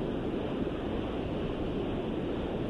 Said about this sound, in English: Why am I hearing ocean?